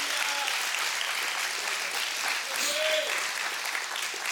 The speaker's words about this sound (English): Come on, clap your hands and rejoice in that.